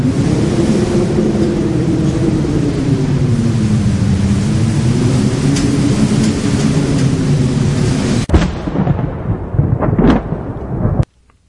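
A loud, steady roar of storm rain and rumbling thunder fills the air, then cuts off abruptly near the end with a few crackling bursts before falling silent.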